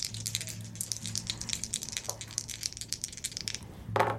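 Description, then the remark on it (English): Dice rattle and clatter in a quick, uneven run of sharp clicks for several seconds as a spirit roll is made in a game, over a steady low hum, ending with a brief louder burst of noise. “Go ahead and make a spirit roll. And roll snake ass.”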